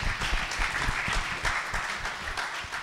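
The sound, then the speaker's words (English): A crowd claps for God steadily for a few seconds, a dense, even patter of many hands at a consistent moderate loudness, with no voices standing out. “Yeah, give God a round of applause.”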